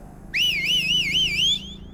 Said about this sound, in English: Sawyer finally walked over to him, put his hand on his shoulder, held up a finger for him to wait, and then let out a long, loud whistle.